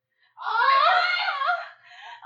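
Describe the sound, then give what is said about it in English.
A voice imitates exaggerated sex moaning: a loud, sustained, wavering high-pitched moan lasting over a second, with pitch sliding up and down, then trailing off into a softer murmur. “We please make our best sex noises?”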